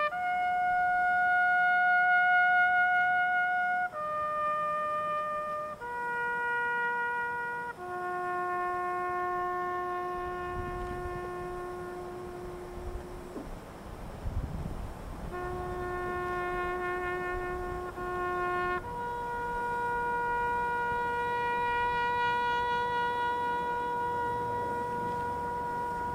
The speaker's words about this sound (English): And the Old Guard bugler played the most moving and haunting tune in American military history, a bugle call named Taps.